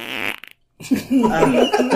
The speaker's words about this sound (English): What is flying up and what is flying sideways? Those are different fart sounds. High pitch, low